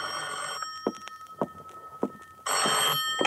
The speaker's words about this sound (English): At 9:45 that night, I was in my apartment waiting for the promised call from John Doe. At 10:05, my phone rang.